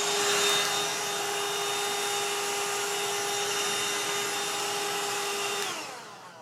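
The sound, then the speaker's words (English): A small handheld vacuum whirs steadily with a high motor whine, running continuously for about six seconds before powering down and fading at the end. “Probably sounds worse when it's sucking up kitty litter.”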